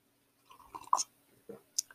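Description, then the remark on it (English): Wet mouth noises: a string of sticky smacks, clicks and saliva pops in irregular bursts, with a sharp pair of louder clicks toward the end and no talking. “Why have you got so much saliva in your mouth?”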